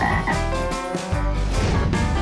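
A frog croaks loudly and steadily, its deep, throaty calls filling the whole moment, with no one speaking.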